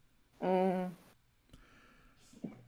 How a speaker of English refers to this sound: Bless you. Heard that twice.